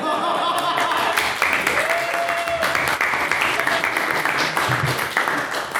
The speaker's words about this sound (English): So I'd like you all to give a massive hand and congratulations